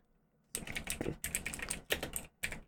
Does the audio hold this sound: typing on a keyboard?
yes